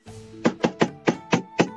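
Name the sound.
knock on a door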